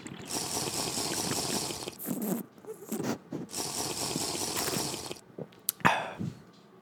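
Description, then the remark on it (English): Wet sipping and slurping of a Sierra Nevada Summer Break IPA beer, with a few swallows, faint clinks and small handling clicks between gulps, with no talking. “Take another sip.”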